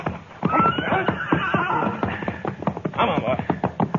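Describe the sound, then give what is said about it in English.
A gray horse whinnies loudly, its call rising and wavering, while hooves clip-clop in a quick, uneven rhythm throughout. “All right, you take the gray horse”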